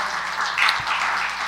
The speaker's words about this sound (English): We will take those claps as, yes, Lord, I'm committed.